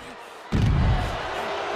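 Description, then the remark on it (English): A single heavy, booming, loud thud as wrestler Finn Balor slams Mysterio down onto the wrestling ring mat, rising over steady crowd noise that continues afterward. “Balor now slams him down.”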